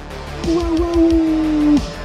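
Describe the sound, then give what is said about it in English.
A person imitates a wolf howl for Halloween with one long, steady, fairly low-pitched note held for over a second before cutting off, over a low thumping rumble. “A special, extra special Halloween howl.”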